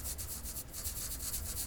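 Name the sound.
pencil writing on paper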